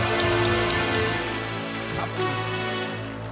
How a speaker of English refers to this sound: If you believe it, give the Lord a mighty clap.